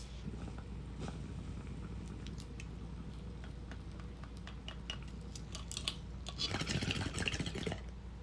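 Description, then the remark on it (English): A bong hit from a packed bowl of apple fritter: a steady low bubbling gurgle runs throughout with small clicks, growing louder and busier near the end. No one speaks. “Anyways, pack that shit and let's... Oop, fuck, moose labs fell. Let's rip this.”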